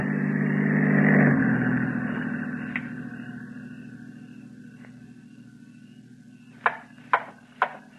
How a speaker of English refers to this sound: The car approaching has a spotlight. It is a patrol car. Quickly.